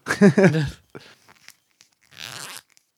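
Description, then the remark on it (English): A short voiced sound is followed by several sharp, crisp crunches and then a longer crackling burst, like someone biting into crunchy potato chips. “Well, that was an interesting sound. All right. All right. I brought some chips.”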